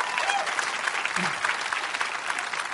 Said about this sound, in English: Now, your golf clap for that is a little ridiculous, okay?